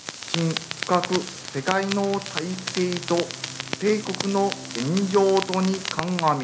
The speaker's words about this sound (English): They tuned in. At first, it was just static. Then, a voice.